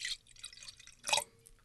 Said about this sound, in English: That was a very anticlimactic, smooth and sophisticated pour. It was silky. It was trepidation. Trepidation. I poured with trepidation